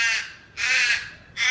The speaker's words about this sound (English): They played a recording of little ravens, which hunt for young birds, over the eggs a few days from hatching.